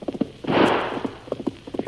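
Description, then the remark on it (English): A paint horse named Scout gallops across the prairie in quick, rhythmic hoofbeats, a steady run of drumming thuds broken briefly by a loud whooshing rush of noise partway through. “The powerful strides of the sturdy scout lapped the distance between Tonto and his quarry with breathtaking speed.”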